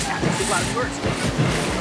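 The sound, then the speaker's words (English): A voice mimics the booming bass of a 12-inch subwoofer in the back of a car, a steady run of deep, rhythmic thumps and buzzy low pulses, loud, lasting under two seconds. “He got a fucking 12-inch subwoofer.”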